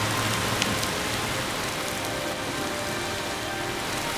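Heavy rain pours down on the 4700 block of Liberty Heights in northwest Baltimore, Maryland, in a steady, dense, loud hiss, with scattered drops spattering on a hard surface and no voices.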